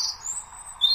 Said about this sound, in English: The sound of a robin. Now, you know, all over the country, there'll be robins going, hello, what's going on? They'll be looking round in absolute amazement. That's their song.